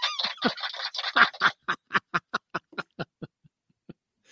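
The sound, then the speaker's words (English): A toy duck in a guitar headstock honks in a rapid, jumbled burst, then settles into a steady run of about a dozen squeaky honks that slow and fade out, with no talking. “Get rid of that duck.”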